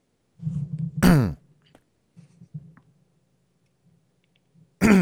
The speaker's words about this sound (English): Excuse me. You okay there, bud? Yeah, I'm just having a little sneezing, eye-watering moment. I'm okay now.